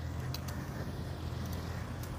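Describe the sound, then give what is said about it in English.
Steady low rumble of car traffic heard while riding a bike along a road and walkway by a park, fairly constant in level with a few faint clicking ticks over it and no one speaking. “Actually, I think I'm going to overtake a lot of these cars and not crash into people as well.”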